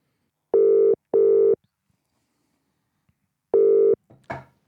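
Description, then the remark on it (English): A telephone ringing tone sounds through the line as a call is placed to a caller: two quick steady rings, a pause, then another ring, followed by a brief clattering noise as the call is picked up. No one speaks. “Get them on the phone. Ring Sasha.”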